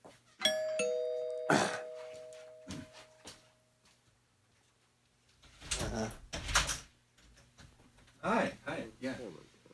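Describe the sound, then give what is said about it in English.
A doorbell chimes near the start, its bright tones ringing out and slowly fading over a few seconds, followed later by muffled voices and some rustling movement. “I'll be right back. Keep the energy going. Door.”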